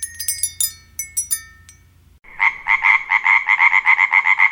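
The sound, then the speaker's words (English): A cell phone on a desk rings with a swamp-frog ringtone: a few bright, ringing chime notes give way to a loud, steady chorus of swamp frogs chirping in quick, rhythmic pulses, clear with no voices. “The cell phone on his desk sounded with an urgency not usually associated with swamp frogs relaxedly chirping.”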